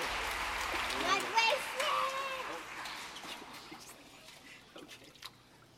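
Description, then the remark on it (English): Water splashes and sloshes as a person is dipped under and lifted out in a baptism by immersion, with a burst of noise early on that settles into fainter dripping and trickling, while voices murmur in the background. “I baptize you in the name of the Father and the Son and the Holy Spirit, buried with him in death, raised to walk in Jesus' life.”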